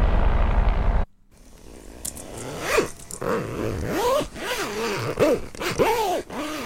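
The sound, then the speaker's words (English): A zipper is pulled back and forth in a run of quick rasping strokes, fairly loud, following a brief burst of low rumbling noise at the start, as when zipping up a jacket or a bag. “It's a zip. Zipping up a jacket or a bag.”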